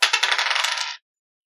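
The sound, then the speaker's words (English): A die rolled for a saving throw tumbles across a hard tabletop, a quick run of bright, rattling clicks lasting about a second before stopping abruptly. No voices accompany it. “Go ahead and roll your saving throw.”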